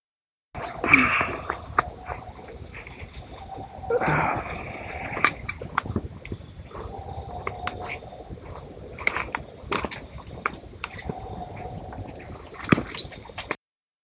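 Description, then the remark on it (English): A faint, distant whistling lingers steadily in the background, nearly buried beneath louder crackles, breathy bursts and rustling noises that come and go throughout. “And yeah, you're talking about, like, that background whistling?”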